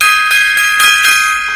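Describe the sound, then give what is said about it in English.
A metallic gong rings with a bright, sustained shimmer, struck several more times in quick succession so the strikes blend into one continuous ringing tone, loud with no voices. “Gong time.”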